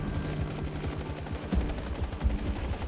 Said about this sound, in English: Hello? I hear gunfire. Oh, shit. It was a raid by the Bureau of Alcohol, Tobacco, and Firearms.